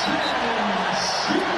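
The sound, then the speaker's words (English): The State Farm Center basketball arena crowd roars and cheers after a steal and slam dunk by Terrence Shannon Jr., a loud, dense wall of noise that holds steady for the whole moment without fading. “And it brings the State Farm Center crowd to its feet.”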